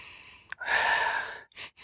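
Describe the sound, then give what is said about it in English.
Someone sniffs a beer: one long, steady breathy inhale through the nose, followed by two quick short sniffs. No one speaks. “The dead air in the podcast is that we sniff.”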